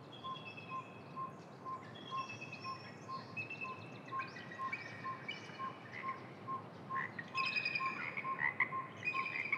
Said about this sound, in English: The high-pitched laughing calls we're hearing are from a bald eagle.